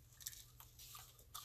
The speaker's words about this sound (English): Sort of. No, definitely a crunchier, like a crunchy part of my candy.